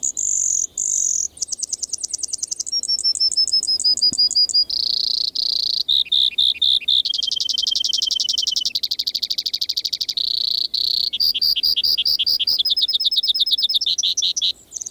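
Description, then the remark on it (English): A Brewer's Sparrow sings in spring from sagebrush in the Columbia Basin of Washington State, a long, unbroken song of rapidly changing buzzy trills and high chattering phrases, loud, shifting pitch and tempo every second or so with no other voices. “Every spring, one of the most musical and complex bird songs on the continent rings forth from the sagebrush of the Columbia Basin in Washington State.”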